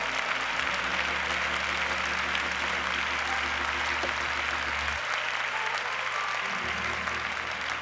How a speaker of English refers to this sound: Everybody stand together. Oh, yes. Clap your hands to the Lord right now.